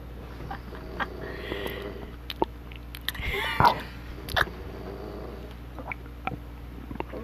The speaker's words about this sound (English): Guys, quiet. Oh, there he goes. Shh. Can you hear him snoring?